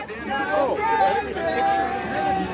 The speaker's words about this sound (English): We got out at the Smithsonian Metro Station and made our way to the Washington Monument. For a cold day in January, it was a decent crowd. There was a lot happening.